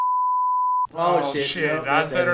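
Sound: censor bleep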